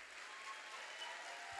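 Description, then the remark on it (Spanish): An audience applauds for God during a church sermon, a dense, steady wash of many hands clapping that holds evenly for the whole moment, soft overall with no voices standing out. “Démosle un aplauso a Dios.”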